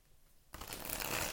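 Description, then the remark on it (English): After a brief quiet moment, a deck of oracle cards is shuffled: a sudden, continuous papery riffle that fills the rest of the short clip, with no talking. “Let me give it one more shuffle.”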